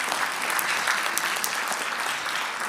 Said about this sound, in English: Do you know, honestly, let's give them another clap. I know there's some in the room.